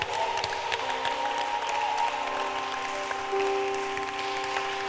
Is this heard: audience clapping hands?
yes